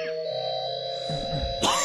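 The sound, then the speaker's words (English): A couple of short, harsh coughs from water going down the wrong pipe break in near the end, sharp and throaty, over a steady humming musical drone that runs throughout. “Again, shouldn't be getting that water down the wrong pipe.”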